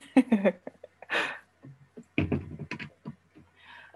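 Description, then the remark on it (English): A short, harsh cough bursts out near the start, amid scattered mouth noises, breaths and soft clicks from a speaker. A few muffled vocal sounds follow, but no clear words. “Well, I'm just going to start over again, 'cause I coughed.”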